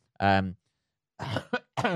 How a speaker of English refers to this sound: sorry, bit of a cough there.